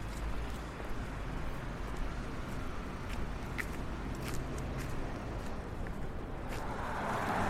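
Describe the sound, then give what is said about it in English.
Steady roar of traffic passing on Carlos Place, by the Connaught Hotel, a dense continuous rumble that never lets up, with occasional sharp footstep-like taps on top. “We can hear the traffic roaring past.”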